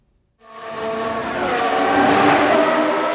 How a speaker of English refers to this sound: The fans are revved up, and the cars are on the track in Austin, Texas this weekend.